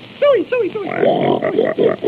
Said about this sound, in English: Oh, Mickey. Come on and bring your pig.